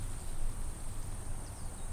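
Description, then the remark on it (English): A rattlesnake's rattle buzzes in the desert in a steady, dry, high-pitched hiss that holds unbroken for the whole two seconds, with no voices. “The trademark warning of a rattlesnake lurking just out of sight.”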